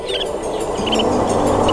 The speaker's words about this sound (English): The snow bunting, today's Talkin' Birds, featured feathered friend.